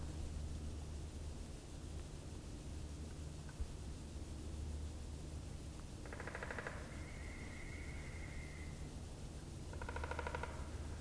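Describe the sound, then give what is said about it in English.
A woodpecker drums twice on a trunk or branch at Haysland Swamp Nature Sanctuary, with everything frozen at the end of 2021. Each roll is a quick burst of rapid taps lasting under a second, over a steady hiss and low rumble. A brief thin whistled note sounds between the rolls. “So these are woodpeckers, and for woodpeckers, instead of song, they do drumming.”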